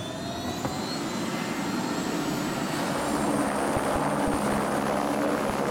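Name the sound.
helicopter in flight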